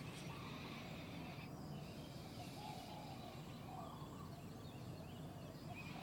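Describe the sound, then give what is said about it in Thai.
Soft, intermittent clucking of a chicken sounds among shady trees over a constant, hissy outdoor background, with a few short bursts in the middle of the stretch. “อยู่ท่ามกลางเมฆไม้ร่มรื่นชื่นใจเมฆไม้ธรรมชาติสายลมแสงแดดเสียงนกเสียงไก่เสียงแมลง”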